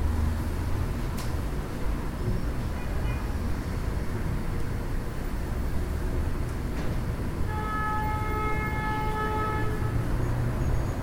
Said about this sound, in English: And while you hold this object in mind, it doesn't have to be the only thing in mind, so you can be aware of the horns and car sounds from the street